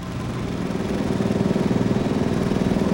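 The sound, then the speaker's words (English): A heavy drill rig drills a 6-inch-wide hole straight down into a mine just after 3 a.m., the driller pushing hard on the drill, its deep engine drone throbbing in a fast, regular pulse that swells slightly louder as it goes, with no voices. “At just after 3 a.m., the drilling begins.”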